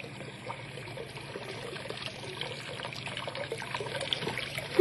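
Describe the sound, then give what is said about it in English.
A thin stream of water trickles steadily through a wooden sluice gate lifted by turning a big round handle, a soft continuous splashing with no voices, swelling slightly louder toward the very end. “Well, at least I'm not sure, but that water, there ought to be a lot more water than that coming through the gate, a whole lot more.”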